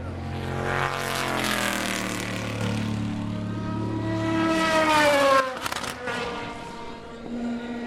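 Several race cars roar past one after another at the Porsche Curves: a Corvette, the Ray Mallock LMP2 car, then a Porsche 911. Their high-revving engines rise and then drop in pitch as each passes. Loud and continuous, with no talking.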